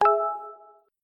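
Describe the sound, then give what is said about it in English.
A single bright chime rings out from a phone, a short message notification with a sharp attack and a clear ringing tone that fades over under a second, heard on its own. “I just got a message on my phone.”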